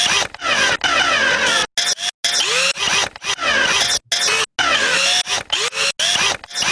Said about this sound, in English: We have this drill sound here, which is a series of drill sounds here, and I have them arpeggiating, actually, randomly. So they're creating this really random drill percussion, and it's a very cool effect, I think.